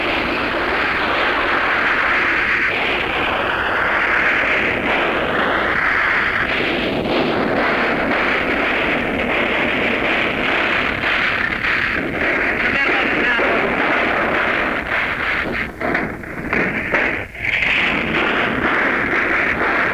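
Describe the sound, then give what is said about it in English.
Anti-aircraft gunfire from small and large warships, including a cruiser, sending streams of tracer fire into the sky, blends into a loud, dense roar of aircraft engines, a continuous heavy din with brief gaps and surges near the end. “The streams of tracer, hot fire, coming out of all the small ships, the large as well.”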